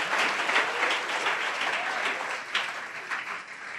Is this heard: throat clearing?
no